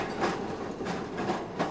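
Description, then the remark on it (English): A tram in 1930s Melbourne rattles along its tracks on an overcast, bitterly cold morning as crowds of workers shuffle towards it, with a steady, rhythmic clatter of wheels over rail joints, loud, with no voices. “The crowds of workers shuffle towards the tram in 1930s Melbourne, a time where we find the city in the depths of the crippling Great Depression.”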